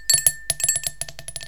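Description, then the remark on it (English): Dice clatter across a hard surface in a quick burst of bright, sharp clicks, bouncing irregularly and gradually quieting into smaller taps as they settle. They are rolled for a perception check in a game. No one speaks. “Let me get my dice. Oh, we can do the cool ASMR roll again.”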